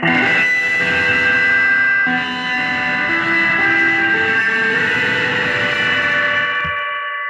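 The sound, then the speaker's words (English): An electric guitar run through a chain of effects pedals all switched on at once, distorted and drenched in heavy reverb, its loud sustained notes smearing together into a dense wash before cutting off near the end. “That's too much reverb.”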